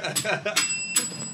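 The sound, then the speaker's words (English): A thin, weak bell gives two short, high-pitched dings that ring out briefly, sounding feeble and half-working, with voices murmuring underneath. “Your bell is weird, man. That's a barely working bell.”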